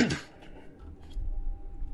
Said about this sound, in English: And now I'm coughing, which is a nice and interesting thing to happen when alone in a room in a podcast. Probably because it's dry.